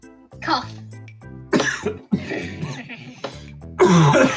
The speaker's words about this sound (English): Cough. Yeah, it's not the, not that kind of cough. Definitely a cold type cough.